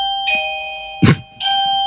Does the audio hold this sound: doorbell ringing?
yes